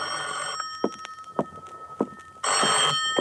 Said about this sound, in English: At 10:05, my phone rang.